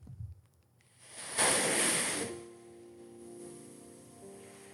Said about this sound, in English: This one is called Elevate Ocean Sounds.